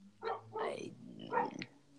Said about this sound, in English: Damn dogs. The neighbor's dogs are always barking.